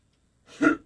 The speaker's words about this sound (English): Excuse me, I had to clear my throat right there.